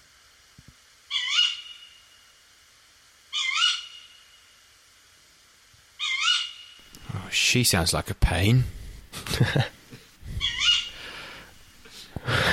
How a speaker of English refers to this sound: Okay, now this is the female of the species, the tawny owl.